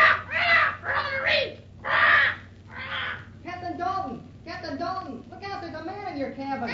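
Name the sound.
parrot squawking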